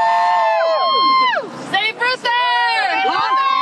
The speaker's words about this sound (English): Parents rallying in Kenosha Tuesday night. They were trying to stop the district from closing schools. That cheer there, Save Reuther. Reuther Central High School was on the chopping block.